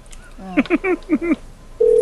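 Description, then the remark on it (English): A voice mimics phone keypad tones of random numbers being typed into a phone, with a quick run of five short, pitched beeps, then a steady electronic tone starts and holds to the end. “Type random numbers into a phone.”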